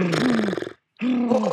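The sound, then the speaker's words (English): A voice does a horse-breathing lip trill with teeth apart and cheeks loose: two buzzing trills, a fluttering voiced brrr that glides slightly in pitch, separated by a brief silence. “Now take this and go to the horse breathing the.”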